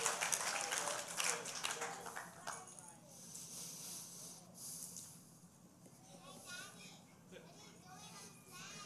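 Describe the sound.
An audience, asked to give God a clap, breaks into loud, dense clapping that lasts about three seconds, then thins out and fades beneath a murmur of overlapping voices and chatter.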